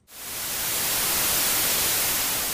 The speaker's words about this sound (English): We'll let you guys get started, and we will see you on the other side of the static.